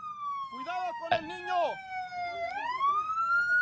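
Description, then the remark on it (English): A wailing emergency siren glides slowly down and then climbs again, loud and steady throughout, with brief voices and a sharp knock briefly cutting in near the start. “Okay, sirens are blaring.”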